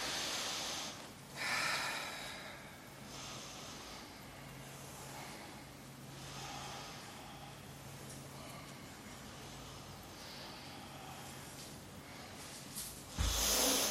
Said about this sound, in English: Three more deep breaths.